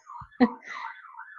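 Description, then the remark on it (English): The siren of an emergency vehicle going past wails steadily, its pitch rising and falling in slow sweeps, with a short low thud partway through. “Oh, no, there's another siren going past.”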